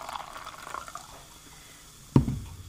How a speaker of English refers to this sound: I'm getting in my drink. Yeah, I'll join you on that. Here, pour a little in this and then we'll switch glasses. Okay.